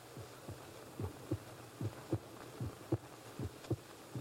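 sound effect, pounding heartbeat sound effect

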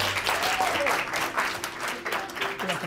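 crowd, audience applause

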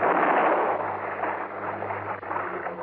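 impact, gunshot

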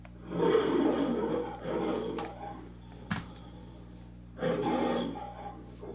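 animal, lion roaring

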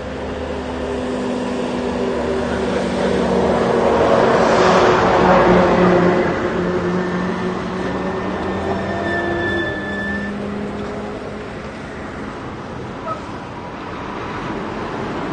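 vehicle, truck driving past

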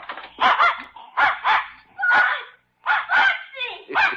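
animal, dog barking

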